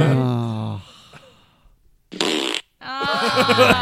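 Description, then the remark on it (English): A loud, raspy fart, with a brief noisy burst in the middle, surrounded by voiced sighing and laughter-like vocal sounds. “It was so … a kind fart.”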